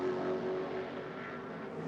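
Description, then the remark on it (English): A race car engine roars steadily on a track: the number 12 car of Aaron Tielitz for Vasser Sullivan, last in line, going into turn 8. The sound is loud and continuous, a sustained mechanical drone with no clear rise or fade, and no voices. “The last car in line, it's just going into turn 8 now, and that is the number 12 of Aaron Tielitz for Vasser Sullivan.”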